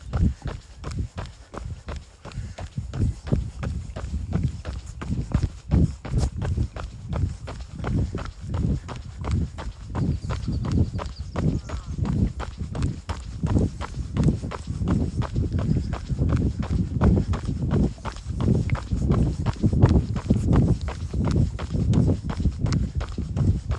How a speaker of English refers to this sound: See if you can pick up three things. One of them may be your footfall.